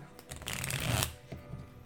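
household object, shuffling playing cards

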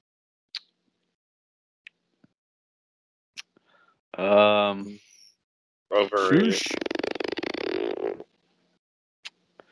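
human body sound, fart into the microphone

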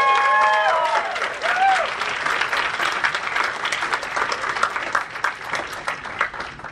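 crowd, audience applause

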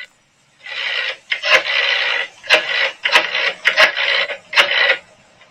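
signal or alarm, old telephone ringing

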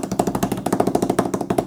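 sound effect, drumroll

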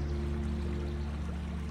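nature, flowing river water

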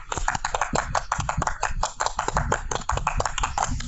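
crowd, audience round of applause

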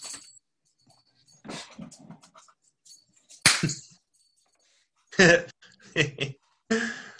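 animal, dog

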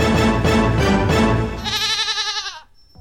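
animal, goats bleating

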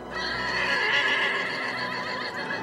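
animal, horse neighing

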